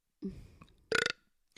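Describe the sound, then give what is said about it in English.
A small, tiny burp: a low gurgling croak followed by a brief, brighter belch, then a quick breath at the end. No talking. “We're also sponsored by Burps, by the way.”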